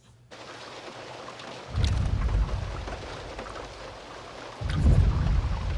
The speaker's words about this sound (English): So the sound of the T-Rex footstep there is really mostly sonic booms. We wanted to get that just low frequency and nothing else.